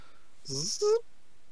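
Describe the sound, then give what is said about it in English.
A person's voice imitates a zipper: a short buzzy, hissing rasp followed by a quick rising vocal squeak, moderately loud, lasting about half a second. “Simulator zipper noise.”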